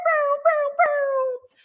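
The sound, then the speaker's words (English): A voice imitates a foghorn: three loud, sustained, fairly high-pitched tones, the first two short and the last one longer, trailing off into quiet. “I should get a foghorn. It's just more fun to do this noise on my own.”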